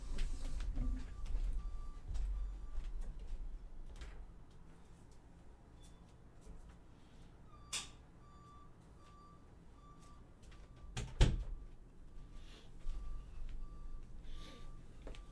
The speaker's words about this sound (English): All right, hold on a second. I got to shut the bathroom window here because it's going to let in the beeping noise that is ever present.